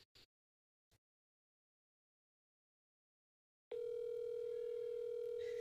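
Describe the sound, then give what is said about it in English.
A few faint taps, a pause of near silence, then a steady electronic ringback tone from an outgoing phone call on speakerphone sounds loudly and continues to the end. “She's on speaker. Okay. Calling Lexi.”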